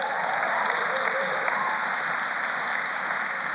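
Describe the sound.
A room full of people claps and cheers steadily for a few seconds, a dense, even wash of applause with scattered voices mixed in, fairly close and consistent in loudness throughout.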